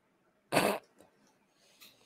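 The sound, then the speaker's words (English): A dog at home lets out one short, sharp bark, then only faint shuffling and rustling noises follow in otherwise quiet surroundings. “Dear God, dogs.”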